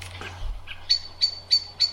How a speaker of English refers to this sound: So that's the alarm call of a blackbird. Oh, and in the background there was a magpie clattering away. But yeah, that's the blackbird, and that is the alarm call. It's called micking, and they'll often do it sort of collectively